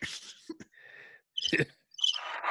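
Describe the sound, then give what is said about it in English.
A brief stretch of a crickets-chirping sound effect, a thin, high, rapidly pulsing trill, sits between louder bursts of rustling, clattery noise. No one speaks. “We got the crickets.”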